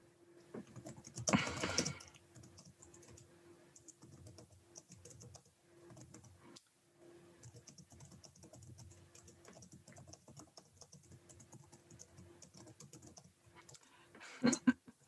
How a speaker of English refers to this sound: I appreciate this is more me typing for my own amusement